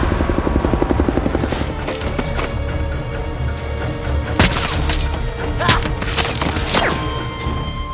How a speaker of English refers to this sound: Chopper's inbound.